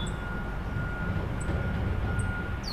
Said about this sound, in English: They're going off now, them trucks.